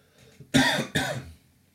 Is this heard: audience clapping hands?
no